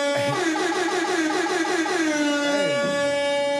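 A loud, brassy air horn sound effect blares in rapid repeated bursts, its harsh buzzing tone pulsing steadily before one blast bends downward in pitch near the end.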